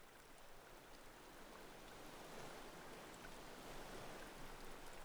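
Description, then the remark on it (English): A small stream trickles and babbles steadily, a continuous soft wash of water with fine splashy detail, fairly quiet, with no voices. “The sound of trickling water draws your attention.”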